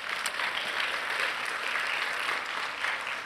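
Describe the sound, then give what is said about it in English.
An audience gives a clap offering to God, applauding steadily, many hands clapping together in a dense, sustained wash of sound that holds at an even level for a few seconds, with no voices standing out. “Could we give God another clap offering?”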